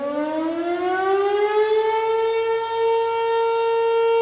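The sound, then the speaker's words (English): A loud civil defense siren wails from behind the volunteer fire station in Minden, Douglas County, as it does twice a day, its pitch sweeping upward and then holding a sustained, droning tone with rich harmonics. No voices are present. “The siren wails from behind the town's volunteer fire station and can be heard for miles.”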